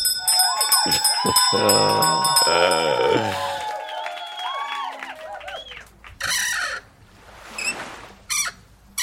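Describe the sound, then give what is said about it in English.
A squeaky cabinet door creaks loudly in long, wavering squeals that rise and fall in pitch, then falls quiet, followed by a few short, scraping bursts near the end. “It was a squeaky cabinet door.”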